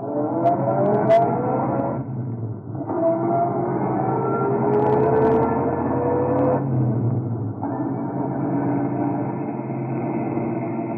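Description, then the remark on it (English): A car engine revs and pulls away, climbing in pitch as it accelerates through a couple of gear changes; steady and fairly loud, with no voices. “I climbed into my car and went away.”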